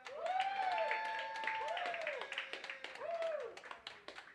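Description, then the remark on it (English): A crowd at a rap battle claps steadily for a few seconds to vote for a contestant, while several voices whoop and cheer over the applause, rising and falling in loud, excited shouts. “Clap it up”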